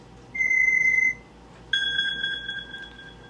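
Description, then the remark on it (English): A phone ringtone beeps twice: a steady electronic tone lasting under a second, a brief pause, then a second, higher, slightly warbling tone that fades out. No one speaks. “Oh, sorry, that's my ringtone.”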